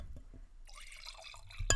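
Wine from a winery in Langley pours into a glass, a steady gurgling stream that rises in pitch as the glass fills, ending with a sharp, loud knock or clink. No one speaks.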